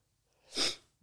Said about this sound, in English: I'm going to sneeze. Maybe not.